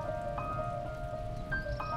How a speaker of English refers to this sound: Can you hear that? It's starting to rain.